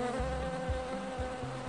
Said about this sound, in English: Today I want to tell you about some little black bees down in Tasmania called Banksia bees.